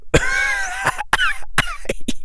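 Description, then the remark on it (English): A fairly loud coughing chuckle: a series of about six rough, breathy bursts spread over two seconds, mixing throaty coughs with voiced, laugh-like sounds, with no speech. “Another coughing chuckle.”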